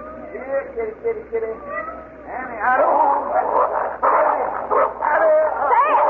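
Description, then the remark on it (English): Kittens crying in thin, high mews, a few at first, then swelling into a dense, overlapping chorus of wavering cries, fairly loud. “Now, stop your crying, kittens. I'm coming.”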